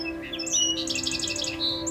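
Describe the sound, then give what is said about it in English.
A song sparrow, a streaky brown native sparrow of North America, sings a few separate introductory notes, then a quick, buzzy trill of rapidly repeated notes, clear over a steady low background hum. “The song sparrow is one of the most well-known native sparrows of North America.”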